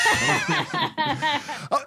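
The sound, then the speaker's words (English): A voice makes a run of short, breathy, laugh-like vocal bursts, then ends on a sharp, close cough. “Okay, whoa, I was just about to change the subject and I coughed.”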